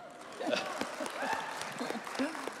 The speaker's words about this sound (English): You can clap again if you want to.